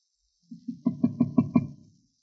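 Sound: knocking on a door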